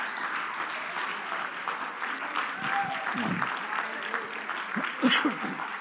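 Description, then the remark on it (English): An audience claps their hands together in a steady, dense burst of applause, mixed with scattered voices and murmuring throughout, with a brief louder spike near the end. “Somebody, let's just clap our hands one more time.”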